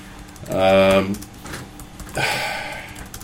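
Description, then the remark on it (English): Computer keyboard typing in two short bursts of clattering keystrokes, separated by a brief pause, with some voice-like sound mixed in. “My typing going to? Oh, sorry.”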